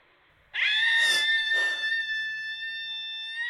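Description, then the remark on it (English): A person outdoors lets out one long, loud, high-pitched scream that bursts in suddenly and holds a steady piercing pitch for about three seconds, with no talking around it. “And sometimes I just think all I need to get rid of the rage is just to scream.”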